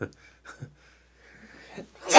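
sneeze

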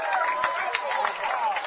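raucous crowd cheering

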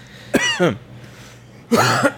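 coughing fit

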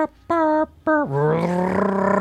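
truck passing outside

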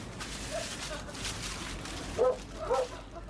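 dog barking and yipping

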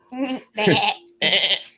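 goat bleating

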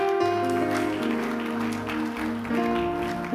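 audience applauding

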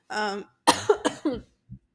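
coughing

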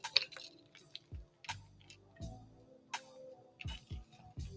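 water spilling onto clothes

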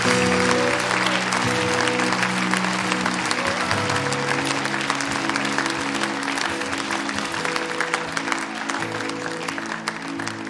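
audience clapping in praise

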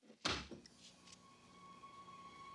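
door closing

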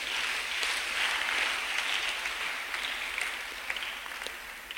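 people clapping

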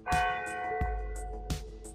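church bells ringing

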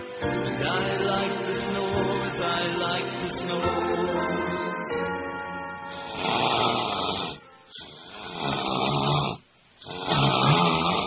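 person snoring

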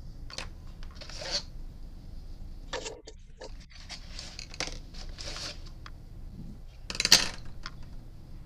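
pencil being sharpened

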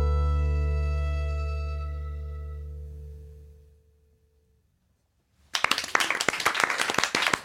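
audience clapping

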